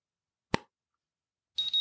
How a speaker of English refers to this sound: So I'll just give you a quick demo of the scanner. You go along each box and just click. And it'll make a little beeping sound, as you can hear.